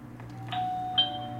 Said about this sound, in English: Truth is, I wasn't the one ringing that doorbell.